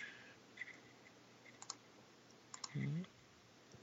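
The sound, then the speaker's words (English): A handful of soft, sharp computer mouse clicks at irregular intervals, some in quick pairs, over a quiet background, with a short murmur of a voice near the end. “Except my mouse clicking. Clickety, clickety, click.”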